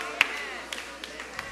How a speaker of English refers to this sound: Give the Lord a mighty hand clap.